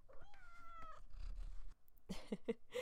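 A pet cat named Ember gives a drawn-out meow with a wavering tone, followed by some soft rustling and a few short, clipped chirping sounds near the end.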